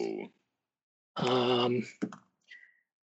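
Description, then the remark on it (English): A twelve-sided die (D12) clatters briefly on a hard tabletop, a few quick sharp clicks as it tumbles and settles, heard just after a person speaks. “That is not a dice I get to roll often. A D12. Here we go. This is a D12.”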